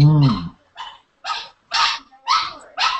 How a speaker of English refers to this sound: That's Ruby? Or is that your dog? That must be Ruby. Yeah, Ruby.